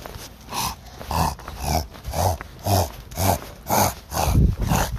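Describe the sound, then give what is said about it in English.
A person imitates the gruff, growly barking of Wes (Wessie Woo), a dog, repeating about nine low 'orf' barks in a steady rhythm, fairly loud with no other sounds. “What's his internal dialogue? Orf, orf, orf, orf, orf.”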